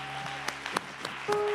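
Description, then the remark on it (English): A church crowd applauds steadily to welcome visiting preachers, with dense clapping and a few sharper claps standing out, while faint sustained musical tones hum underneath. “Let's give them a cornerstone welcome in Jesus' name.”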